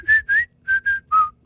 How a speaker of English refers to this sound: Wow, you are a good whistler. Thank you. I'm very jealous of your whistling skills. So I was whistling that song, but it was like over and over and over and over.